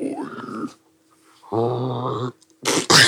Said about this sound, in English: I just burped.